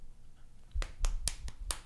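Five crisp finger snaps in quick, slightly uneven succession, each a sharp bright click over a quiet low rumble, with no one talking.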